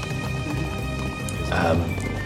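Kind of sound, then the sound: animal, horse hooves clip-clopping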